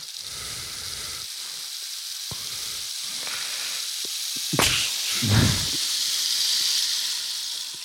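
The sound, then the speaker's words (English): A rain stick being shaken, a steady granular hiss like falling rain, with a couple of louder whooshing surges near the middle before settling back into an even patter. No voices. “The rain stick of productivity.”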